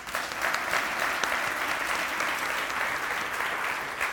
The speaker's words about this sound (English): Give me a hand clap.